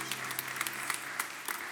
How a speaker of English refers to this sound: Now can you say amen? You've been waiting to clap. You wanted to clap so bad.